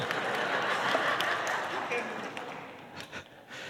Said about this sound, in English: And I appreciate the applause. Know what, my wife never applauds for that particular skill.